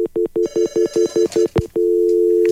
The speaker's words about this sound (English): Ah, we have a phone call coming in. Let's see who's tapping in on the phone lines here.